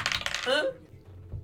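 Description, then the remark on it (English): A die being rerolled clatters onto a hard table and spins with a quickening, whirring rattle before settling to a stop, fairly loud, followed by quiet room tone. “Wow, yeah, there was some serious spin on that dice.”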